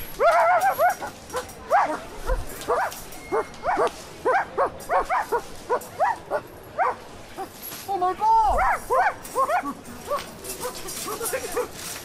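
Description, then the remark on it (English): A person's voice mimics a dog, giving a long run of short, rhythmic woofs and yips, with brief gaps between bursts and a couple of low thumps. “I am a dog, so come in here.”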